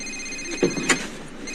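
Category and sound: signal or alarm, phone ringing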